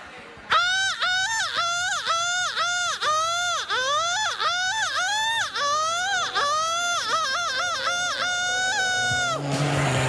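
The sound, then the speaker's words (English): A person imitates a seagull in front of a crowd, letting out a loud, unbroken series of high, nasal squawking cries that rise and fall in quick repeated bursts for about nine seconds. “stop flapping your wings and get over here and give us your best seagull.”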